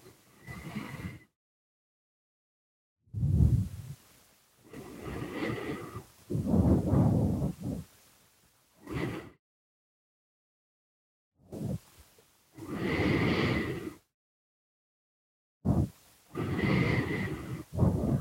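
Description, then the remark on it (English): A person imitates a tiger as the character Selby in a tense scene, letting out a series of loud growling and snarling bursts separated by short silences, with no ordinary talk. “I didn't need the tiger sound effects from Selby there.”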